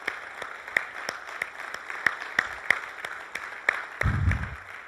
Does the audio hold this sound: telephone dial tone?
no